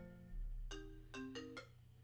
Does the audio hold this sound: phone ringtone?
yes